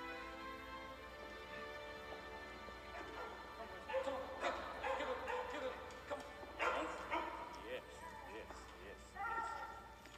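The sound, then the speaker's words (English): Dogs bark in several loud, irregular bursts over a steady low background hum, with a few yips and whines between the barks and some faint voices in the mix. “I love that they have dogs.”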